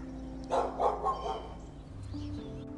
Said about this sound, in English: Sorry, folks, the neighbor's dog started barking at me. You know, some dogs just don't know how to chill out. Just chill out, dog.